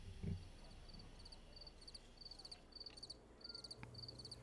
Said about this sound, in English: Want to sit outside with me? Crickets are gossiping.